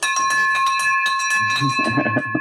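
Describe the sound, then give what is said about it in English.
A bright victory bell rings loudly and steadily, its sustained metallic tones layered over a burst of excited cheering and chatter. “We got the victory bell ringing loud for you”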